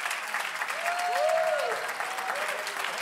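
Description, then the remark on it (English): A crowd claps their hands to the Lord in a dense, continuous wash of applause, with a few voices rising and falling in pitch over the clapping. “Clap your hands unto the Lord and magnify him.”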